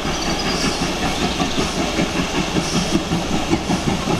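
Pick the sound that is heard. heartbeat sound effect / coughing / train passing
train passing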